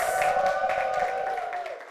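An audience applauds steadily throughout, a dense wash of clapping with a sustained keyboard tone held underneath, fairly loud and even from start to finish.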